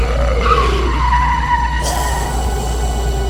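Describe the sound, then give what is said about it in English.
A car tears away with a sustained screech of skidding tires, the squeal sliding in pitch over a low, steady engine rumble, loud throughout. “Start the car, man. Let's go.”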